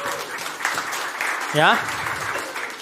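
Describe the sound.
An audience claps steadily for about three seconds, a dense, even patter, with one voice briefly calling out over it midway through.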